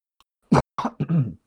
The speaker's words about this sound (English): Bless you. That was a cough.